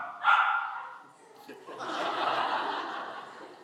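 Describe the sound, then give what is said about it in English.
A dog barks excitedly at a baptism gathering beside a big tub of water: a sharp, high yelp first, then after a brief pause a longer, rougher stretch of eager barking and whining. “Even the dog is excited.”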